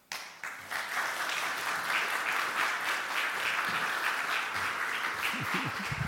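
Warm, sustained applause from an audience for a speaker at the end of a talk: dense, steady clapping that starts abruptly and continues at an even loudness throughout, with a few faint voices surfacing near the end.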